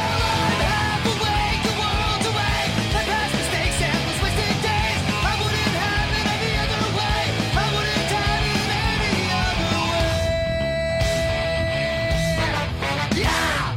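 A loud, dense ska-punk band plays at full volume at the end of a song, the singer shouting rather than screaming the chorus over the driving instruments; a sustained note rings out briefly near the end.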